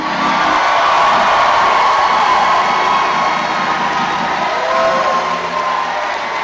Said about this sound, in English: And you got 30 seconds to scream like you know God's able.